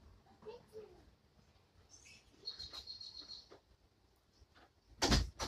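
door being closed

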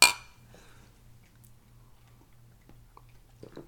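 glasses clinking

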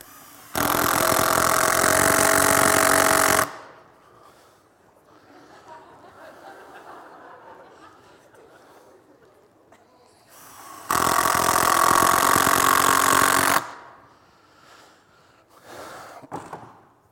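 power drill running

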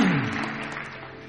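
audience clapping

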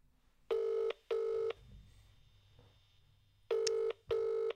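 outgoing phone call ringing

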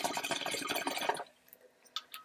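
water bubbling

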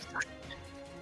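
cough

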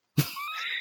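sneeze

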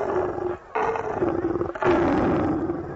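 lion roaring

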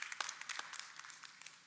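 church audience clapping

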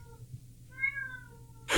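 cat meowing

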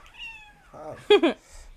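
cat meowing near microphone

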